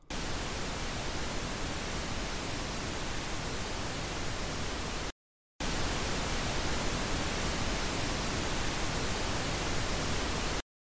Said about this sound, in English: The smallest change that listeners can generally hear is a 3 dB increase, which is surprising since that is equal to a doubling of power. Listen to a bit of Pink Noise played twice. The second time, it is 3 dB louder. Can you detect the difference?